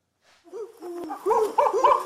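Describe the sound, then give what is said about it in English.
Monkey calls: a string of high, hooting whoops that start faint and grow louder and more rapid, overlapping in quick succession, with no talking. “Man, the monkey sounds, I could just listen to those all day long.”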